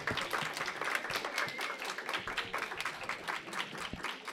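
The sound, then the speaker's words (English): A small group claps together for several seconds, a dense patter of bright, overlapping hand claps at a steady moderate level with no voices standing out. “Let's do the applause thing again.”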